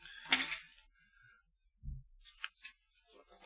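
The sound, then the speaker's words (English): A car door shuts with a dull, low thump, preceded by a sharp metallic click and followed by a scatter of light rattling clicks. No one speaks. “What's that? The car door.”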